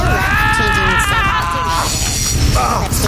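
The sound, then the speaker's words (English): A loud, shrill scream rises and wavers for a couple of seconds, strained and bleat-like, over a steady rumbling, noisy background. “That screaming is not from me, though. Who's screaming?”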